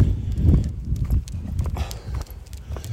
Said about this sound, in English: You can hear my footsteps. You can hear the wind. Audio's not quite as crisp as it is upstairs in the studio.